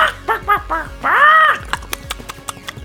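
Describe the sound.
A person imitates the chicken from Vincent: a few quick clucking bursts, then one drawn-out rising-and-falling squawk, followed by a scatter of sharp clicks and taps.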